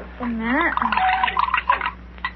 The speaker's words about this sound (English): Read the label on that medicine bottle and pour a dose in that glass of water, will you please?